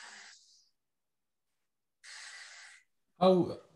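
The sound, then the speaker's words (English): Two airy breaths, the second a slow deliberate exhale lasting nearly a second, after a pause, demonstrating a breathing exercise with the air directed out to the ribs; a voice starts speaking right at the end. “And then you do the same thing again, with this time directing the air out to your ribs. So you breathe out here.”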